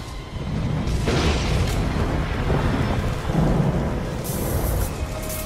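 A loud thunder crash breaks sharply about a second in, then rolls into a heavy, sustained rumble with the hiss of rain beneath it, powerful throughout.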